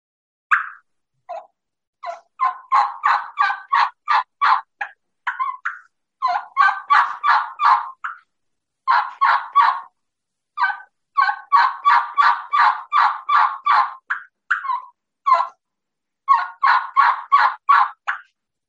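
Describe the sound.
Hen turkey yelps produced on a game call, loud, in several runs of crisp, evenly spaced notes separated by short pauses, with no talking.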